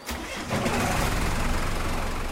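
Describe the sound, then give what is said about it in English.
A dive boat's engine, in Hawaii, cranks and catches, then settles into a steady, loud, rumbling run, with no voices over it. “You can put on the gear while I drive the boat.”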